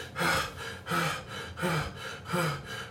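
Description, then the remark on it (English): A voice imitates heavy, exhausted breathing of a person leaning against a wall, trying to catch their breath: four loud, rasping gasps in a steady rhythm, about one every three-quarters of a second, with no talking. “So when I finally got up, I'm leaning against the wall, trying to catch myself. And I'm breathing hard.”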